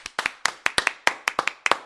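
A brief round of applause: a quick run of about a dozen sharp, crisp hand claps in a slightly uneven rhythm, as if from just one or two people, with no talking over it.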